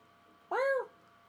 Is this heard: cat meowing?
yes